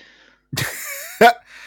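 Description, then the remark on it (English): Two people cough at the same time: two sharp coughs come close together, loud, the second burst brief and forceful, with no talking around them. “Well, we both coughed at the same time.”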